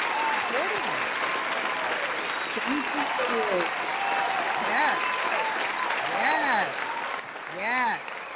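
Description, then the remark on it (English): Steady, dense applause from a crowd fills the whole stretch, with voices talking and calling out over the clapping throughout. “I'm going to give you an applause.”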